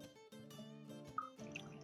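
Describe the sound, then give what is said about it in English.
A single shot of Shackleton whisky glugs from a bottle into a glass of a honey-sweetened drink in a steady pour, with soft rhythmic gurgles and a few small drips, fairly quiet, with no talking. “Pour that in there.”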